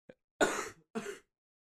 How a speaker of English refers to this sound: Really taking the wind out of my sails for a cough break.